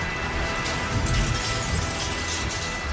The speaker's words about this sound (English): Wait, what's that noise? And at that moment, the Knight Cruiser smashes through the wall of Boogeyman's hideout.